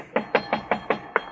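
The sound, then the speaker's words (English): Six quick, evenly spaced knocks rap on a wooden door, fairly loud, each a short hollow thud with no voices around them. “I mean, if he answers it, he'll probably answer your knock, too.”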